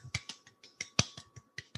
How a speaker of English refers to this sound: Hey, you know, y'all. That was our fake applause. I celebrate all milestones.